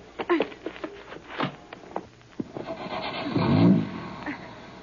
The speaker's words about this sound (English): Never mind. Get in and start the motor. Okay.